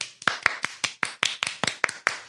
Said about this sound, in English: Cheers! Let's clap for ourselves.